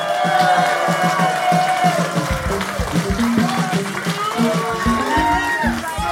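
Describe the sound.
A studio audience cheers and applauds a first-time guest on the show, steadily, a dense wash of clapping with whoops and shouted voices rising over it throughout.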